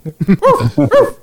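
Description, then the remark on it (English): A person mimics a big dog, letting out a quick run of deep, throaty woofs and growly barks, loud, with no other talking. “Like, …, bark like a dog.”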